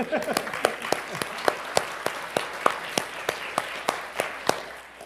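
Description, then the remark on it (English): An audience clapping together in a steady, rhythmic beat, roughly three sharp claps per second, over a continuous wash of scattered applause and faint murmuring voices, tapering slightly at the end. “We can clap there.”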